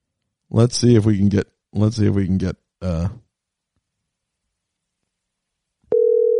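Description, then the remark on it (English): A few seconds of a man talking, then a pause before a loud, steady telephone ringing tone of a regular phone call cuts in and holds until the end. “I'm going to hang up and call you right back on regular phone.”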